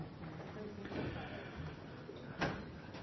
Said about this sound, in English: Can we open a door, back door, something door? In order to get some airflow, maybe that back door too, guys, if you don't mind, so we can get some airflow going here.